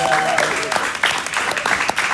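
A crowd applauds panelists steadily, dense overlapping claps forming a loud, continuous wash of noise with brief sharper peaks throughout, no talking over it.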